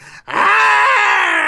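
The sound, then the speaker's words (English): A person lets out a loud, sustained growl imitating a tiger, a harsh, rasping roar that starts abruptly after a brief pause and holds steady for over a second with no speech. “I was being a tiger.”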